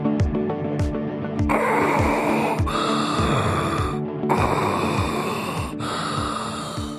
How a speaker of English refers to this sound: I'm just doing some deep breathing visualization as if I'm diving under an attack boat that's coming my way as I'm going through a visualization technique.